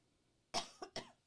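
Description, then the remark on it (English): Three quick, raspy coughs in a row, the first strongest and the next two shorter, with no one talking. “Sorry to be coughing in your ear here.”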